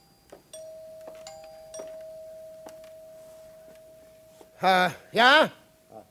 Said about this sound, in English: Then the doorbell rang. It's them.